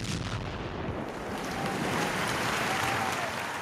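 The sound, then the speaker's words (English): A canned applause effect: a dense, steady wash of many hands clapping, loud and even for several seconds, with no voices over it. “Hit the boom and the applause.”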